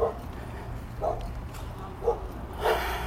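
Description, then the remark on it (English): A dog left alone at night barks and whimpers in short, high yelping bursts, about one per second, over a low background rumble. “Some pup there left alone tonight.”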